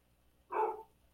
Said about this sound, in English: Oh, you hear my dogs? Oh, there we go.